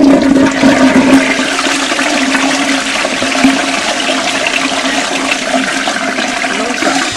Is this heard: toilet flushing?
yes